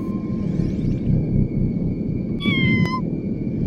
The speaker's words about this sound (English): Okay, where's that noise coming from? What noise, Captain? I hear a cat. No cats in here, Captain.